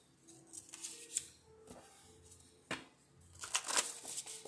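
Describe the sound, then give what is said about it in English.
A deck of cards for a card reading being shuffled: soft papery riffling bursts broken by a few sharp snaps and taps, fairly quiet, with no talking. “All right, let me shuffle these real quick.”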